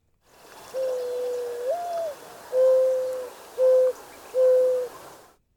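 A mourning dove coos its soft, hollow call: a long rising note followed by three steady, evenly spaced hoots, clear, with no other sounds around it.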